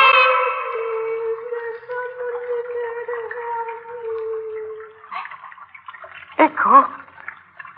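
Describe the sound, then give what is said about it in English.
Water dripping in a sewer: a sustained, hollow humming tone fades out, then a couple of resonant drips land with bright, ringing plinks near the end. “Water. Water again.”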